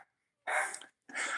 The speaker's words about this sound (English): We got some dachshunds here. Delivery man coming to the door. The dachshund alarm goes off.